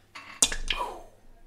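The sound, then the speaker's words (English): A die is shaken and rolled for an attack roll in a tabletop role-playing game. There is a quick rattle, then two sharp clacks as it hits the surface and tumbles to a stop on 17, the clatter fading within a second. No voices. “I'm going to use that same dice that just got us a 20 on initiative. Give it a good old shakeroo.”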